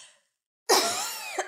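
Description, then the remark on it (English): A single harsh, raspy throat-clearing cough, loud, erupting after a brief silence and rumbling on for most of a second before ending with a small final catch. “This is my last clear of my cough, I promise.”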